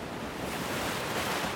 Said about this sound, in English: Suwamish Beach. One of the best surfing spots in Southern California, and a kind of paradise. Perfect clear water below palm-topped cliffs.